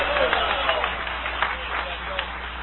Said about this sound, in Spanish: Dale un aplauso de poder al Cordero de Dios. ¡Aleluya!